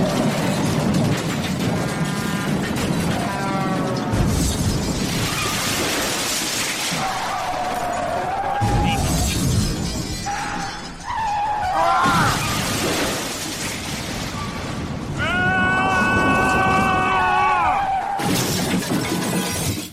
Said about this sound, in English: What's going on? I crashed the car.